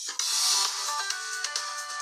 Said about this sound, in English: Like I have a ringtone, but I don't really know what it is. I don't know what mine is. Should we find out? Should we find out what our ringtones are? Yeah, okay, let's have a look.